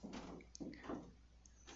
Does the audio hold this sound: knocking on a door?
yes